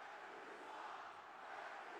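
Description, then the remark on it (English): A packed Philadelphia arena crowd at a basketball game against the Toronto Raptors jeers the referees, a dense, sustained wash of voices that stays loud and steady throughout with no single speaker standing out. “And the Philly crowd serenading the officials as the Raptors bring it front court, right to left.”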